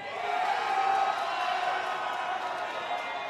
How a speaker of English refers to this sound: All right, the crowd's excited.